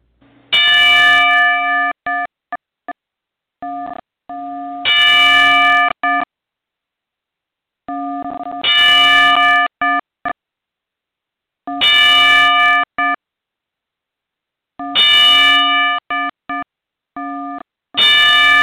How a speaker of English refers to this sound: Ladies and gentlemen listening to the FWC tonight, that is how we repay our respects here in the wrestling world to our fallen soldiers, to our fallen brethren, should I say, with a 10-bell salute.